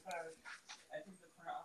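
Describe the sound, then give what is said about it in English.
A Plott hound and Lab mix dog named Mocha whimpers in a string of short, high, whiny cries, fairly quiet, with brief pauses between each thin, nasal whine and some talking mixed in. “She's a plot hound. Lab mix, and I've never heard of a plot hound before we got her, but they're pretty much hunting dogs used to they were bred in South Carolina, used to hunt bears.”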